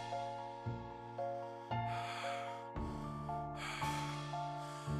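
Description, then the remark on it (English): Heavy, labored breaths come in rough, noisy bursts about once a second, each inhale harsh, over a low steady droning hum. “breathing grows labored.”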